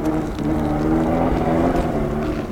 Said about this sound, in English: This year my screech owl call finally does get a response, but it's from the wrong kind of wildlife. First dirt bike of the evening.